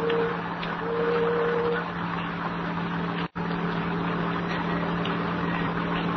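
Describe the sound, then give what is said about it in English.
A car drives along in the rain with a steady engine drone and road rumble that holds constant throughout, broken only by a momentary cut partway through. No one speaks. “Then the door slammed, and we were driving off.”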